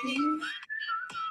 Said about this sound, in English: The whistle gets you. Yeah, really.